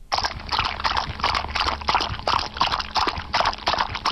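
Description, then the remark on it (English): Steady splashing and sloshing of water with irregular thuds of a horse's hooves as it walks through water, continuous for several seconds, with no voices. “Okay, so in case you didn't catch what that is, that's a horse walking in water.”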